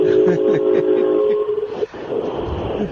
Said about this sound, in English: Uh-oh, the train's going by. I'm sitting at a railroad track.